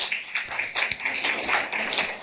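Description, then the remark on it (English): A crowd gives another round of applause for licensed practitioners. Many hands clap steadily in a dense, hissy patter that stays at an even loudness from start to finish, with no voices over it. “Let's give another round of applause for our licensed practitioners.”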